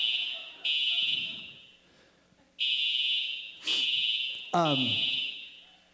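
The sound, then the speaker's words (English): A loud, shrill fire alarm, a false alarm, blares in repeated long bursts with brief gaps while faint voices murmur underneath. “So, it's a false alarm as far as that goes. So, we don't need to rush out of here.”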